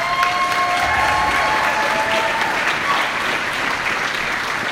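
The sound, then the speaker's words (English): A crowd applauds steadily, a dense wash of clapping that holds at an even loudness for the whole stretch, with a few faint whistles threaded through it. “If you can't get a big round of applause after saying no one sees my face or body, and I still give it my all, you're not in the right room, but you're in the right room.”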